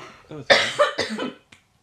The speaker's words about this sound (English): Sorry. My tea went down the wrong way and I was trying really hard not to cough when you were being that really poignant moment. Sorry, hang on, let me just cough.